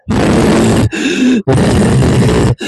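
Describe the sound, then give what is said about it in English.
A voice imitates heavy, strained breathing and grunting in three loud bursts, each a rough, effortful exhale with brief pauses between, like someone struggling with exertion. “I listened to some of it, and it was just … breathing heavily.”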